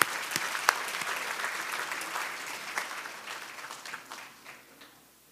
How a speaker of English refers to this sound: And let's just give these girls and their parents a round of applause.